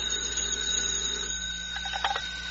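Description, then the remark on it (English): A telephone at FBI headquarters rings in a few quick, trilling bursts toward the end, over a steady low electrical hum, with no one speaking. “Tonight's FBI file continues at headquarters, where Special Agent in Charge Woods receives a phone call.”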